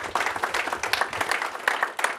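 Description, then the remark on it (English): An audience applauds a discussion panel to thank it, many hands clapping in a dense, crackling wash that holds fairly even in loudness for a couple of seconds, with no voices over it. “Let me thank the panel with a big applause, please, because I think they have done an excellent job.”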